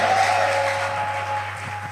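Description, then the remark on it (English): A church audience claps for the Lord, steadily, in a dense, continuous wash of applause, with a sustained keyboard tone humming underneath throughout. “Give the Lord a clap of hand and a shout of praise in the church of God.”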